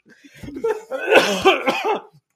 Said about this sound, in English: I'm going to cough and they're going to say I have COVID.